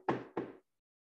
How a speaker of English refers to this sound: Now, did I have COVID? I don't think so. I don't think I did. As far as I know. Knock on wood.